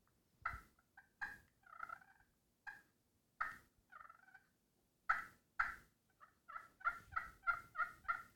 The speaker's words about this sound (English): All right, pot calls. This is a pot call we make. It's got slate in the bottom. We call it two-faced, but it's got glass on the top. Generally, in the morning times, you can use this and slate side and kind of.